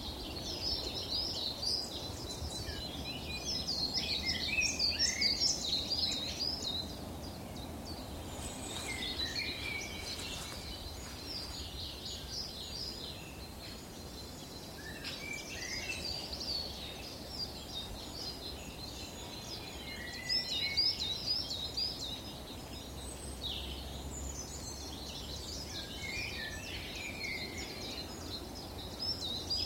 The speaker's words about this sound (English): A gorgeous willow warbler.